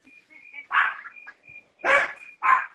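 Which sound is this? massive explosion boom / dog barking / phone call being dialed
dog barking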